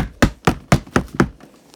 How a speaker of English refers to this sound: They were pounding on the door, not even in like a certain like beat. They were just smashing at the door.